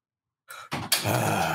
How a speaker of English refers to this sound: So sorry, my dogs are losing it right now. I'm trying to keep them calm.